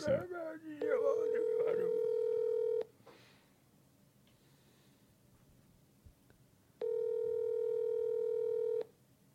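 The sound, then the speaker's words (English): An outgoing Skype call rings out: two long, steady ringback tones about two seconds each, separated by a pause. Brief voices are heard at the very start. “Yeah, answer the phone.”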